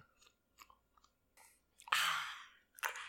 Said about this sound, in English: Oh, I was going to say listening to me slurp my soup. Sorry.